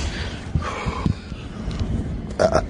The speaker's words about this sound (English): I got the burps. I get nervous burps.